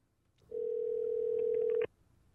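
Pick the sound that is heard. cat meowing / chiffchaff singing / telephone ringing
telephone ringing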